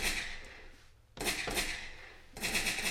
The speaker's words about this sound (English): All the gunshots.